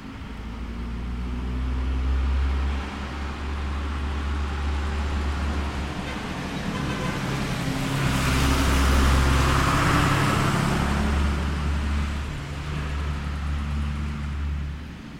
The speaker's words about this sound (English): I'm sitting on my front porch yesterday recording, and the UPS truck goes by. And I get a lot of deliveries, and the guy knows me, so he honks as he goes by. Listen to the spread of these microphones.